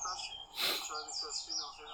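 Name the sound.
birds chirping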